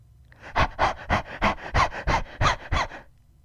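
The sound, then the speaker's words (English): A person imitates a dog panting: about nine quick, breathy huffs in a steady rhythm, fairly loud, with no talking over them. “I was trying to make dog noises.”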